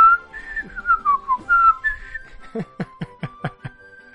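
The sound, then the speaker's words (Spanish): Someone whistles a bouncy video game opening theme over and over, with gliding melodic phrases that give way to a quick run of short, punchy staccato notes. No one talks. “Estoy desde que ha arrancado silbando una y otra vez el”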